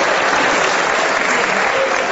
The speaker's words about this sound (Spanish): No se puede aplaudir en el juicio.